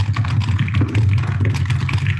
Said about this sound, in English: So that's 14d8 damage, and I want everyone to hear what it sounds like to roll that many dice.